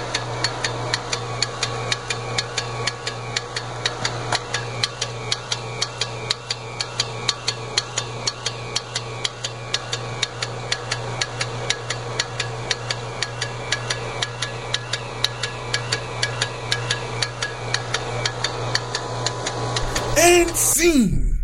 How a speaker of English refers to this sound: that clicking sound is coming from the back of your motor. It's the governor opening and closing.